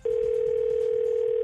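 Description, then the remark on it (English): A loud telephone line tone as a phone call to a mom rings through, one steady unbroken note that holds for the whole moment, with no voices over it. “Phone tapping mom. Let's listen in.”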